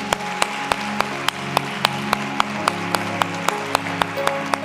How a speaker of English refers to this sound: Come on, give a round of applause to those that made that decision.